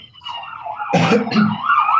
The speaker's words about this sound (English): Sorry, there's sirens going by my office door here.